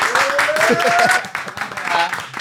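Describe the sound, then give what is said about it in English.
A short burst of clapping and cheering from a few people, with excited voices whooping over the steady patter of hands. “Can I get a round of applause?”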